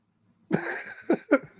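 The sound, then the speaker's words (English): A few quick, deliberate coughs from a single voice: one longer voiced burst followed by two short, sharp ones in close succession, sounding staged rather than natural. “Not to mention any names, but … of …, cough, cough.”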